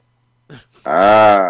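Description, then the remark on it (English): A pit bull lets out a brief low grunt, then after a short pause a loud, drawn-out groaning grunt with a throaty, tonal quality that rises slightly and falls away. “I got my dog right here, right in front of me, my pit bull.”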